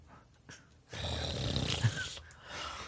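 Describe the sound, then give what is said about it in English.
An exaggerated sniffing sound made by a player acting out a sniff perception check in a tabletop dice game: a quick short sniff, then a long, loud, drawn-out snuffling inhale through the nose lasting over a second, with no talking. “I do a sniff perception.”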